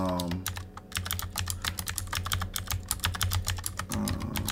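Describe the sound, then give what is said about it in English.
Rapid, steady typing on a computer keyboard, clear, with crisp clicking keystrokes in a quick irregular rhythm over a low background hum; brief voice-like sounds appear at the start and end. “I am typing this thing.”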